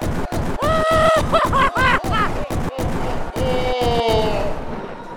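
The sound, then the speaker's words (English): Video game giant tank firing its cannon: a rapid, loud string of sharp blasts over about five seconds, mixed with whining, rising and falling synthetic tones, with no one talking. “I'm gonna make a giant tank for your pasta and fire the cannon.”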